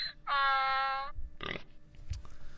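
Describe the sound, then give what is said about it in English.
A sharp, cartoonish pig squeal rings out loudly for under a second, followed by a short gruff oink-like grunt and a faint trailing snort, with no one speaking. “So anyhow, so give me a Donkey Kong and a pig for that one.”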